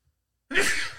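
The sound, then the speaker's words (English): A single sneeze bursts out suddenly after a moment of silence, a breathy, forceful blast that trails off quickly. No one speaks. “Bless you. Thank you.”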